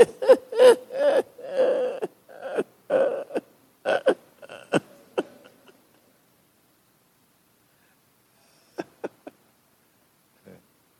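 A long, drawn-out belch rumbles loudly for several seconds in choppy, gurgling pulses, then fades; after a pause, a few quick, faint clicks follow.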